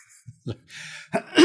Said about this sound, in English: I would say, number one, I'm gonna clear my throat real quick. Sorry.